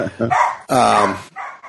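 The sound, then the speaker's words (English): A female dog barks in a quick, insistent series: a couple of short yaps, one longer drawn-out bark, then two brief barks trailing off. “Oh, she's driving me nuts. See? She's telling you right now, get me one, get me one.”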